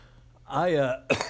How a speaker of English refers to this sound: damn it, this cough.